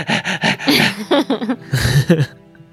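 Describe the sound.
A person's voice mimics a dog panting with a quick run of about eight breathy, voiced huffs in a steady rhythm, fairly loud, before trailing into quiet.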